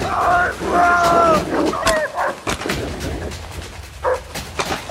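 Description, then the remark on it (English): Several dogs chasing people bark and yelp in a loud, frantic burst, sharp barks tumbling over each other in quick, irregular succession, with a few higher drawn-out whines early on. “God damn it, they're catching up on us!”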